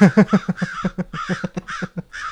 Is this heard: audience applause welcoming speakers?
no